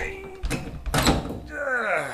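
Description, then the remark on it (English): A heavy door scrapes and rattles in a couple of strained bursts, followed by a grinding slide, as someone struggles to force open a stuck door that slides upward. Voices murmur faintly around it. “Let's try the door, shall we? Oh, all right, yeah. Now you have to slide it up.”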